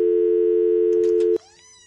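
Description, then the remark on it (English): A steady, unbroken telephone dial tone after a dropped call hums loudly for over a second, with a few faint clicks near its end before it cuts off abruptly, leaving quieter, softer sounds behind. “Sometimes our phone just drops calls out of nowhere.”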